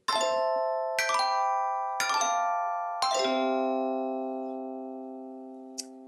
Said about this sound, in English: Righto, well then play that funky chime.